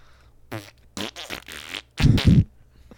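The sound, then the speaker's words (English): A fart noise: a run of short, sputtering bursts ending in a louder, deeper blast, fairly loud, with no talking over it. “Dude, poop and fart jokes.”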